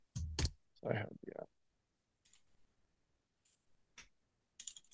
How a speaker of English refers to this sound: Let me try typing in the title into the sci-fi, into the Sci-Hub.